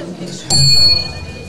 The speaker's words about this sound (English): Do you want to ring the bell? Hang on. Here.